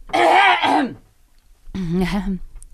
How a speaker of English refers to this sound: Let me clear my throat, not into the microphone, before I begin.